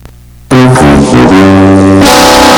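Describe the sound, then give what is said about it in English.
A loud, distorted fart sound effect bursts in after a short quiet moment, buzzing with shifting pitch for about a second and a half, then breaking into a harsh, noisy blare. “Gave it a fart.”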